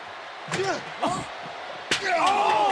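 A bare fist punches a chair three times, each blow a sharp, hard smack, the last one loudest, with indistinct voices and crowd noise rising around the impacts.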